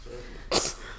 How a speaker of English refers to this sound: Is that the reason why you're coughing?